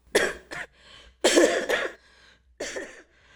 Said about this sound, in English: Oh my God. Don't worry, today I'm still coughing, but it's not as bad as before, yeah? It's already improving a lot.